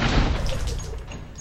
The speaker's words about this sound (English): The report of the pistol would have been deafening in the confined space of the morgue, if not for Cynthia's suit filters.